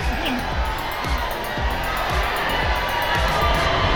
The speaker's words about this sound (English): I keep my head down and push for the door, wading through the exotic crowd, trying to stay lost in it.